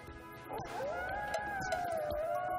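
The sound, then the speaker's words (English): Michael Winslow imitates a wolf howl, a long, sustained, gliding wail that rises and then slowly falls, loud, with a busy musical backdrop underneath. “We got it. You can do a wolf.”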